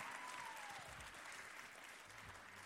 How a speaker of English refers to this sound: Let's give them a little round of applause just to encourage them. That's great.